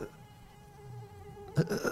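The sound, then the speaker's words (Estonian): A steady high-pitched mosquito whine drones on for over a second, then gets cut through by a sudden louder rustling thump and some scuffling noise near the end. “Sääski on palju, tea mida on palju.”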